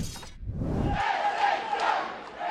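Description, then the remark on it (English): A packed wrestling arena crowd of about 1,000 people at SHW Retaliation at the Action Building in Canton, Georgia erupts in loud, sustained cheering and yelling, a dense roar of many voices that swells after a brief low rumble and holds steady throughout. “Listen to this crowd.”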